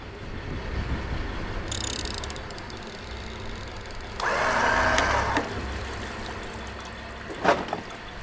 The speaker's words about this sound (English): I'll bring the boat alongside the rope, and if you grab the rope, and clever. I can do that. Then with the winch here. Okay.